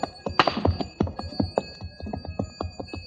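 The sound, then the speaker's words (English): Bells on camels being driven away clink in a steady, rhythmic patter, their bright metallic ringing tones lingering between strikes as the jangling fades away into the distance. No voices are heard. “As I stood and listened to the camel bells fade away in the distance, I wondered if it might not be a glorious thing to go to Kafiristan and be a king.”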